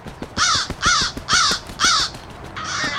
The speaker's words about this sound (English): Stupid fucking crows.